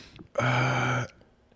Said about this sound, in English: I smell your burp. Oh my god! That is ripe.